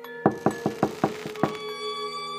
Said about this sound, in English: A knock on Sid's cell. Another nurse in scrubs. Hey, someone's at the door for you.